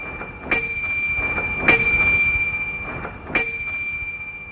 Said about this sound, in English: This bell was used in the early 1890s. The reason brass was more commonly used for these bells was because this metal creates a very loud, high-pitched ring which carries along farther distances than cast iron or other metals.